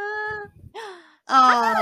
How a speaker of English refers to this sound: You might get some meows from the cat who has just arrived.